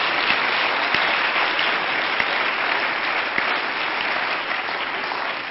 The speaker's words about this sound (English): Why don't we all together give our guest a good hand clap today?